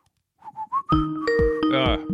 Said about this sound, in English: Hello, caller. Are you going to whistle us a tune?